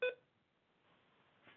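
A computer gives a single short, clear electronic beep at the very start, then quiet room tone follows with a faint soft rustle near the end. No one speaks.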